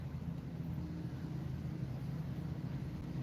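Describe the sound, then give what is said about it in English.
A cell phone vibrates as it receives a text message, a steady, low buzzing hum that drones on evenly for a few seconds at a fairly quiet level, with no one talking over it. “That's the person's cell phone vibrating, receiving a text message.”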